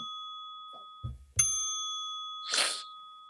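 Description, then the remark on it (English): A bright notification bell dings once with a sharp strike, its clear tone ringing on steadily, joined by a brief airy shimmer near the end. A couple of soft thumps precede it; no talking. “If it's your first time watching, you have not subscribed, hit the little button down there, turn the little notification bell on. Bing!”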